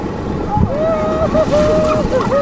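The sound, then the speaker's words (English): Rushing whitewater rapids roar steadily around a paddled raft, a dense wash of churning water and wind with water sloshing into the boat, and a voice calling out paddling commands faintly over the noise. “Water is sloshing into our boat. We drop down into another rapid, and the boat lurches.”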